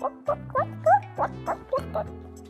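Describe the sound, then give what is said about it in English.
A voice imitates a chicken with a quick run of about eight short, clipped clucks in an uneven rhythm, clear over a steady low musical backing. “Cluck like a chicken.”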